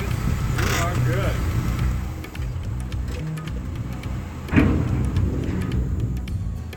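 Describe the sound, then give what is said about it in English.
The engine of the oldest ferry in the country, a barge pushed by a tugboat on its side that carries about 3 cars and many bikes across a river, rumbles steadily and fairly loudly throughout, a deep continuous drone with a brief surge near the end, while muffled voices murmur faintly underneath. “The oldest ferry in the country is kind of like a barge that has a tugboat on the side of it.”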